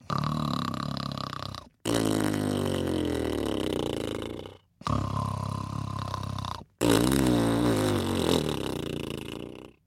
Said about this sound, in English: Not much later, the king was fast asleep and snoring like a pig.